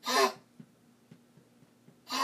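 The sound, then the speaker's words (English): A female dog gags and hacks as if something is caught in her throat, as she has been doing for the past few days: two harsh, raspy retching bursts separated by a quiet stretch with a few faint clicks. “Sorry, guys, that's my dog.”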